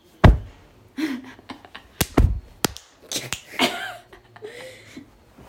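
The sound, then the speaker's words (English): Several heavy, muffled thumps of a hand slamming down on a bed, close to the microphone and loud, spaced irregularly with faint vocal sounds in between. “I just slammed on my bed where the phone is.”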